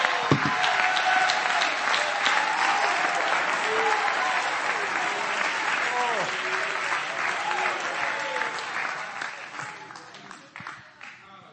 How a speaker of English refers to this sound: Clap your hands again and shout unto the Lord with a voice of triumph.